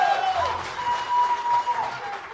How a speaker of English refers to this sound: I've never gotten a white people standing ovation ever, so this is cool.